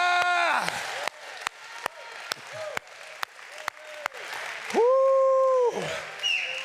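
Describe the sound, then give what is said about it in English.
An audience claps for Jesus in a dense, sustained burst of applause, with sharp individual claps popping through and a few drawn-out voices crying out over the top. “Now let's give Jesus a clap right now.”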